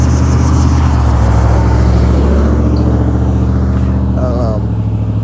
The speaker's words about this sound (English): Excuse this truck going by, y'all.